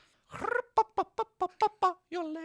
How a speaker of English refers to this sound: You listen to chickens yodeling. Oh, the Japanese techno chicken yodeling?